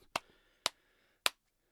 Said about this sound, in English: Trying to do golf claps for you so the mic doesn't pop.